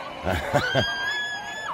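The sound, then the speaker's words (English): Several quick shouted bursts from a lively, celebrating street crowd at night, people laughing, dancing and screaming in packed streets, followed by a long, steady, high whistle that carries over a busy background of voices. “People shouting, laughing, dancing, whistling, screaming.”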